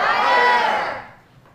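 An audience shouts the word "fire" together in one loud, unified burst of many voices, swelling briefly and then fading away after about a second.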